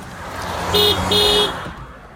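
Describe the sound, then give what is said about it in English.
Two short car horn honks in quick succession, the second slightly longer, loud over a steady low rumble of road and engine noise. “I'm gonna give you two honks for your birthday.”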